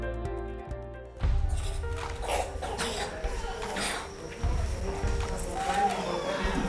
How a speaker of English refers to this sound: Can you hear them coughing? Can you hear that deep chest cough? Because the resistance is so low that the least little thing becomes a serious life or death issue for these children.